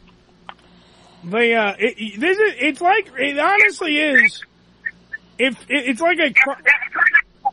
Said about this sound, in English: Wait, we're losing you, baby. Uh-oh. No, I'm here.